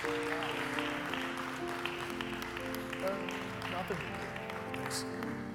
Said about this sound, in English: Got another hand clap of praise.